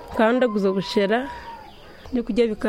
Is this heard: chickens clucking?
yes